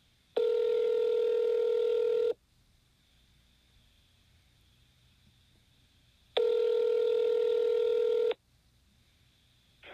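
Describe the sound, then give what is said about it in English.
An outgoing phone call to a random person rings out: two long, steady electronic rings separated by a few seconds of quiet hiss, with a third ring just starting at the end. No one speaks. “My phone call conversation with, well, you guessed it, a completely random person. I called them earlier today.”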